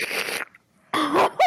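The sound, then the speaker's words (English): Wet, noisy slurping bursts with a choking, sputtering quality from a man choking on ice, two rough outbursts separated by a brief silence, ending in a short strained gasp with a rising and falling pitch. “What was that slurping noise? It's him choking on ice, bro.”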